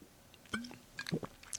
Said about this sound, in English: Belgian white Blue Moon. Blue Moon. A nice light. Yeah. Cheers. Columbus Day, Halloween-y, Thanksgiving-y kind of celebratory beverage. Clink.